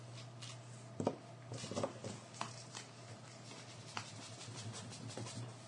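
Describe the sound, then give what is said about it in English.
An eraser scrubs against paper in quick, uneven strokes, trying to rub out pen ink, a soft scratching and brushing with a few sharper scuffs, fairly quiet against a low steady hum and no talking. “So rubber's not going to cut it. No. Not for things written in pen, no.”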